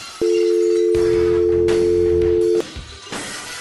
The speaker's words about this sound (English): We just firing off dial tones around here.